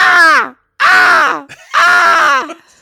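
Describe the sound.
A person imitates a crow with three loud, harsh, raspy caws, each a drawn-out voiced squawk that slides down in pitch at the end, separated by brief pauses.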